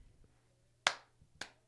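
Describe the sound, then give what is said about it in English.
Two sharp, loud hand claps as a person shows how they clap, about half a second apart, each with a quick bright crack and short decay over a quiet background. “You got the proper clap.”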